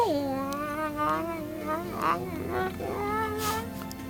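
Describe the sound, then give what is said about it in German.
A person stroking a cat imitates a cat with drawn-out, wavering meows, one long mewing call sliding up and down followed by shorter meow sounds, clear over about four seconds. “Du sprichst die Sprache der Katze?”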